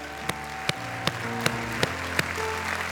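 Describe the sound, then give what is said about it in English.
An audience at a church service claps in steady unison to thank the preacher for his sermon, six sharp beats at an even pace, over sustained organ or keyboard chords that hold underneath. No one speaks. “Let's take a moment to say thank you to the man of God for the word of God.”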